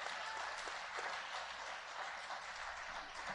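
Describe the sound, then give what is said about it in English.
An audience at a church service applauds steadily, a dense, sustained wash of many hands clapping at once, even in loudness throughout, with no speech over it. “Come on, give these people a hand clap.”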